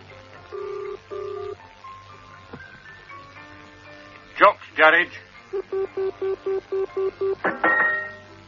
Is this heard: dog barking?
no